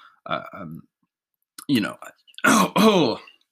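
A person coughs and clears their throat in a few harsh bursts as Thai curry goes down the wrong way, with short pauses between them.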